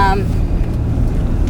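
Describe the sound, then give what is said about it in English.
Steady, loud low-pitched rumble of a car interior while driving away from a movie theater, constant road and engine drone filling the whole moment, with a brief voice fragment at the very start. “Oh, by the way, this podcast is always going to be in the car while we get out of the fucking theater.”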